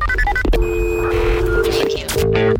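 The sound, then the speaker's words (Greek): A quick run of short telephone keypad beeps at varying pitches as someone dials the first phone call of the morning, followed by a long steady dial-style tone and a buzzy ringing tone, loud with a hum of background noise. “Πάμε παιδιά να καλέσουμε. Πρώτο τηλέφωνο για σήμερα.”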